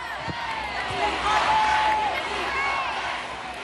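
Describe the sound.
At a New York City celebration, a large crowd erupts into a loud, sustained chant as U.S. Soccer president Carlos Cordero gets up to speak, many voices overlapping in a dense roar with higher shouts and whoops rising through it for several seconds.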